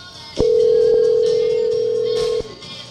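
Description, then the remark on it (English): A telephone ringback tone plays once as a phone call is dialed, a steady electronic hum lasting about two seconds before cutting off, clear over faint background noise. “Oh, if we have to leave a voicemail, it's not going to be good. No. Pick up your phone.”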